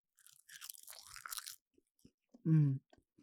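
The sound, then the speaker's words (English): Crisp, crackly crunching of a seaweed snack for about a second, a rapid run of dry brittle snaps, followed by a brief loud hummed vocal sound and a few faint mouth clicks. “I'm eating some seaweed. One of my favorite snacks.”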